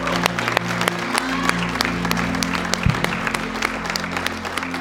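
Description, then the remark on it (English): A church audience gives the Lord a hand clap of praise and thanks after a prayer, clapping steadily in sustained applause, many hands overlapping into a dense, bright patter with sharp individual claps standing out, over a low steady hum. “Come on, let's give the Lord a hand clap of praise and thanks today.”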